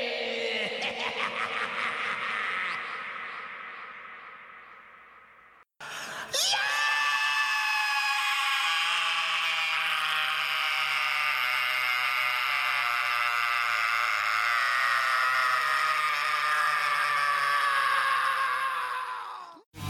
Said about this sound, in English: Okay, so here is scream versus scream versus scream versus scream. You're doing the layers of screams?